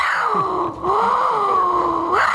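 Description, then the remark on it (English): A device from Mexico, played as a new intro, sounds a jaguar roar: one loud, sustained, tonal growl lasting about two seconds, its pitch sagging and rising with a brief break near the start, with no talking over it. “It does sound like a fucking wild cat.”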